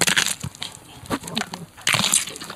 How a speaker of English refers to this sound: Oh, the noise as well, breaking of bones. But there's no feeling inside the body.